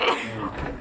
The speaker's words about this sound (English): Bless you. And sneezing.